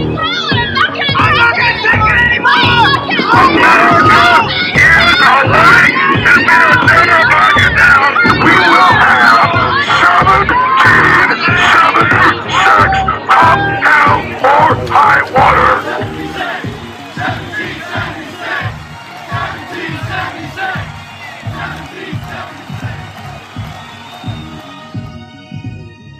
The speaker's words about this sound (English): open the window, stick your head out and yell and say, I'm as mad as hell and I'm not gonna take this anymore.